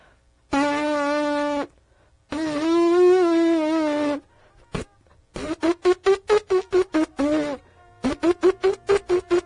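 Lips buzzing like a trumpet without a mouthpiece: two long, reedy, wavering tones, then quick bursts of short staccato buzzes in a rapid rhythm, fairly loud, with no talking.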